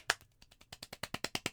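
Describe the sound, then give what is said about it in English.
A quick run of roughly a dozen hand claps, starting with a sharp single clap and then settling into a fast, steady rhythm, moderately quiet and with no voices. “And I applaud you.”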